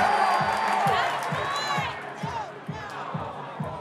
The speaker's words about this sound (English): They have given him an ovation that rang my eardrums. There's nothing but static in between my ears at this point. They are willing him.